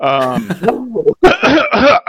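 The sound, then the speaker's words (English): A voiced groan gives way to a string of loud, harsh, exaggerated mock coughs, a joke about Corona fears, about three rough bursts in quick succession, theatrical rather than natural. “you know, just start, like, coughing horrifically.”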